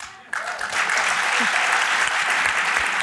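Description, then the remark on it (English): An audience at a panel discussion at Columbia University applauds the panelists: a burst of applause starts abruptly and continues steadily, a dense, even wash of many hands clapping at a loud, sustained level. “Let's give a big round of applause to all our panelists.”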